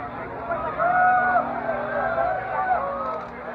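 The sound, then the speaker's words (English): Hundreds of people lining the streets and standing on walls in rural Kozhikode roar outdoors, booing and shouting obscenities at a woman walked through by police, many voices shouting and jeering at once in a continuous, fairly loud wash of sound with a few raised cries cutting through. “On top of the walls on the streets, hundreds of people gathered all around in rural Kozhikode, booing, shouting.”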